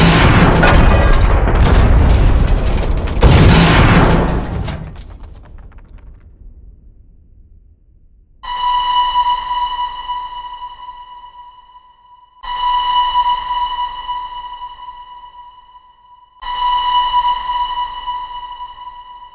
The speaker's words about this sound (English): Martin said by the time he saw the Ravenswood car parked around the bend, he applied the brakes, but they did not work. At 5:27 p.m., Friday, February 4th, 1977, Martin's train collided with the one in front of him.